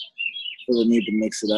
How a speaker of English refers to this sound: We got the birds chirping. Yeah, man. You know, the birds chirp. It's a nice day. It's a nice day out. You know, the birds want to hang out too.